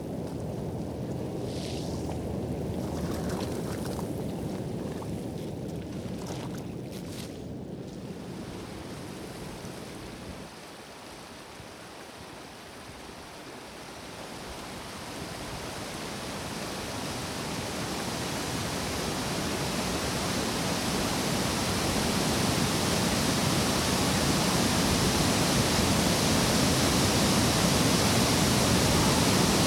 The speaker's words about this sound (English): The falls are the main focus of the park, with the hiss of mist and constant contact between water and rock being felt and heard across the entire space.